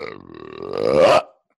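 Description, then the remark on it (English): A long, loud burp rumbles for over a second, starting low and rough, then swelling louder and croaking upward before cutting off abruptly into silence. “I mean, that really just put every burp you've ever done to shame.”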